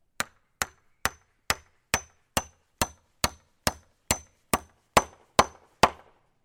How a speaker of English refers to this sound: You can carry on hammering.